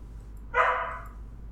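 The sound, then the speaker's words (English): A female dog gives a single short, clear bark that tails off quickly over a low, steady background hum. No one speaks. “She's seriously a very good dog, though.”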